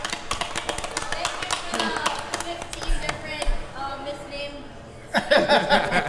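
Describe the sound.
A crowd applauds with dense, steady clapping throughout, rising to a louder, fuller burst near the end, with some murmuring voices mixed in.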